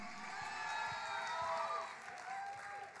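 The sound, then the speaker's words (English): An audience cheers and claps together in a steady, dense wash of applause, with excited shouts and whoops rising above it throughout. “Canaan is shouting amen. Canaan is clapping their hands. Canaan is jumping for joy.”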